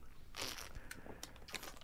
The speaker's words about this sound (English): That's me swallowing. It was very good.